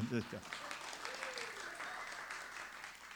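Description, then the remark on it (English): A crowd claps steadily and densely throughout, with a brief voice at the start and a faint shrill whistle from little boys gliding up and down partway through the applause. “Shrill whistling from the little boys and immoderate applause from everyone.”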